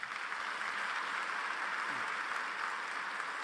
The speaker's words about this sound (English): Now that deserves a round of applause.